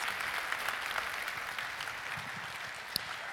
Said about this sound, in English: But just appreciate these guys and just what they've done in ministry and how they've blessed us, really. So give them a good round of applause.